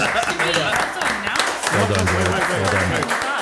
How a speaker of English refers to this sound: Can we get some applause?